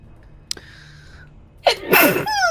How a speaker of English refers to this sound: Bless you.